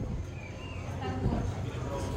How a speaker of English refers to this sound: And I am just about to walk into Black Spire Outpost proper. You can start to hear the bustle. You can start to hear the people buzzing. Different sound effects.